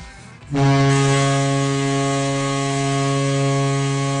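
hockey goal horn

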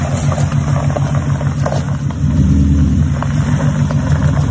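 pickup truck engine idling

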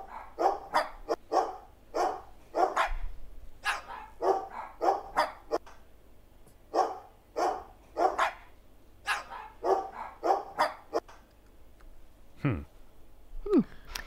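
dogs barking

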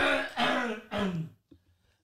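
coughing and throat clearing

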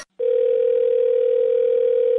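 telephone dial tone

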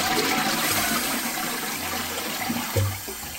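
toilet flushing sound effect

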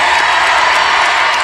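audience applause and cheering

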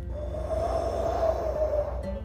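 yawn

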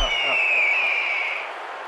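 red-tailed hawk call

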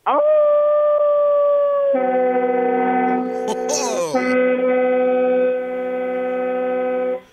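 howling sound effect

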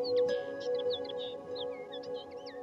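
birds singing

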